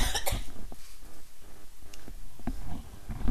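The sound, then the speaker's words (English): A short cough bursts out near the start, followed by quieter rustling and a couple of brief breathy sounds; no one speaks. “All right, one of us had to cough, and the other of us had to laugh.”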